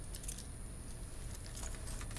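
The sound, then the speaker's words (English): Keys jangle faintly in a few short metallic bursts, rattling near the start and again toward the end over a low background hum, with no one speaking. “Open. Where are my keys?”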